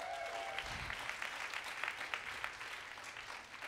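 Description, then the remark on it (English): An audience claps steadily for members of the BuzzFeed team, a dense wash of many hands with no pauses, fairly soft overall and with no voices over it. “Can you just clap it up for them?”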